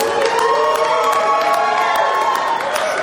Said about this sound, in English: She brought her cheering section with her.